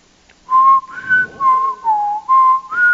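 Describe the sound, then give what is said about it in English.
A person whistles the theme tune of the TV show Chuck, a short, bright melody with several sustained, sliding notes in a tuneful phrase and brief breaks between them, loud and clear with no talking. “I thought he was doing the whistle for it.”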